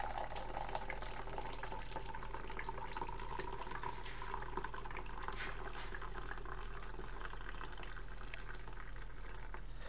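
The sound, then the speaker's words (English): Coffee pours steadily into a big cup in the early morning for a long, unbroken stretch, a continuous liquid splash over a low background hum, with no voices. “You may be listening to that and thinking, goodness gracious, he just keeps pouring and pouring and pouring and pouring. But I have a big cup.”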